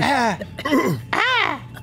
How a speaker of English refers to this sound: And you all begin to kind of cough a little bit, just instinctually from the period that you were undetermined time.